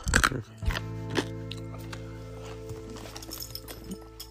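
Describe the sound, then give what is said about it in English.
Hard Ricola lozenges being chewed, with a burst of sharp crunches at the start followed by softer, irregular clicking bites over a steady low background hum. “I'm eating these like they're candy. They're not candy. Ricola.”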